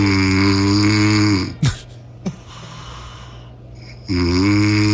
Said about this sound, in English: Listen to this snore. This is …'s snore.